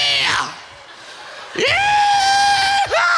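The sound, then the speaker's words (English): A short falling shriek, a brief pause, then a loud, long, high-pitched scream held steady before it breaks and rises again. It sounds exuberant and joyful, with no words spoken. “As the voice of the Lord, I'm screaming the joy.”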